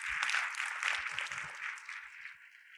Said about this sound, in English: Again, one more round of applause for Dr. Douglas. Thank you very much.